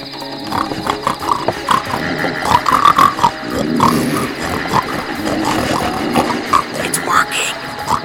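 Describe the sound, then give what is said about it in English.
Several people on all fours make loud, wet snorting and grunting noises in imitation of pigs to blend in with a drove of pigs, mixed with real animal grunts and squeals, a busy, continuous barnyard jumble. “why can't we just get down on all fours, start snorting, and blend in? The drove of ghost pigs won't even notice that we're living humans.”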